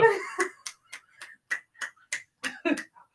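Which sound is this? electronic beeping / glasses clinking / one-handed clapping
one-handed clapping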